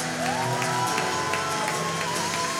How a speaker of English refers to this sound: Come on, let's give him a big cheer.